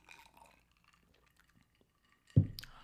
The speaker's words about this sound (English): But at the same time, I'm going to take a sip before I say this